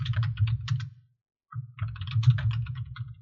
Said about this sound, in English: What are you typing? Just copying my list from my phone over to my PC. I thought I had turned off the microphone so you wouldn't hear that. I have failed spectacularly.